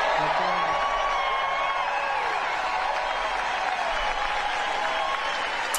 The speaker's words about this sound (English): Yeah, and of course the applause went on.